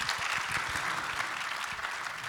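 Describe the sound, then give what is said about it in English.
An audience claps steadily for a group of women at a panel event, a dense, even wash of many hands with no voices standing out, holding at a constant level for a couple of seconds. “So, hey, man, can y'all give a round of applause for these women?”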